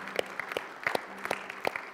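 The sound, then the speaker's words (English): An audience claps their hands in steady applause, giving the Lord a hand clap for those saying a prayer for the first time; a dense patter of overlapping claps with a few sharper, louder claps standing out. No one speaks over it. “Would you give the Lord a hand clap for those who are saying that prayer maybe for the first time?”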